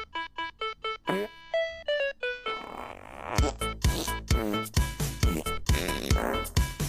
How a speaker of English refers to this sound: And you know what? We all changed our mind. We all laughed very hard. So this is the fart song.